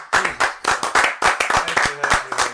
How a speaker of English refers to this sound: Gonna have one person clap.